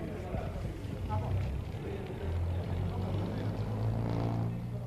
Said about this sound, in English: Now they have it in the bus and they're moving it down along. Once in the bus, they're fixing it firmly, and the bus is moving off.